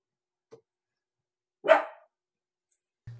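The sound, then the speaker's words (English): A single sharp bark from a dog named Allie rings out amid near silence with a couple of faint clicks and a low thump. “As the bark right on cue.”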